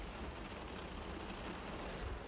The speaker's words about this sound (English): Do you guys hear the rain? It's pouring down really damn hard. Hold on. Let's see if you guys can hear it.